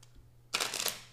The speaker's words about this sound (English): So we'll shuffle up the cards.